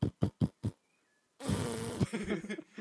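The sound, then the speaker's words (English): A voice imitates a sputtering, fart-like bike engine: four quick blubbering bursts, a short pause, then one longer, continuous raspy buzz, fairly loud. “Their bikes just like a collective of fart noises. But no, not a collective. I'd say just one continuous fart.”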